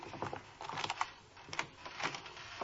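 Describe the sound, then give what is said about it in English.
A father's set of keys jingles and clinks, followed by the metallic scrape and click of a key turning in the lock of a door with a screen door as the family returns carrying bags, with no voices. “It's all right, dear. I have my keys.”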